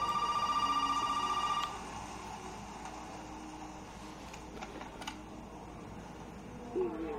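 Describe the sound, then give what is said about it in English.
A telephone rings once with a loud, steady electronic tone lasting about a second and a half, then cuts off, leaving quiet room noise and faint background shuffling. “Sounds like the phone's working again.”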